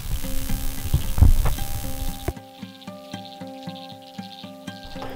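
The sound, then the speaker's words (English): Oxygen streams out of a submerged aquatic plant once the oxygen in its leaf exceeds that in the surrounding water: a dense, fizzing underwater rush that gives way to a steady run of soft, regular ticks and pops with faint ringing tones. “And that's what you're hearing, this rush of oxygen streaming out of the aquatic plant.”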